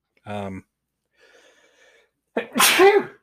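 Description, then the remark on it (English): A single loud sneeze bursts out near the end, preceded by a short voiced sound and a faint inhale-like noise. “Bless you. I'm going to cut that part out.”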